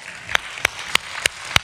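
An audience applauds, with five sharp, evenly spaced claps standing out over a soft, steady wash of clapping. No one speaks.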